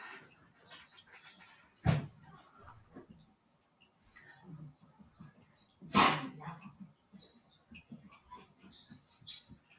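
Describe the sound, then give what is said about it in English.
A pet dog waiting to be let inside gives two sharp, loud barks a few seconds apart, with softer whimpering and restless shuffling noises filling the gaps between them. “I gotta let my dog in.”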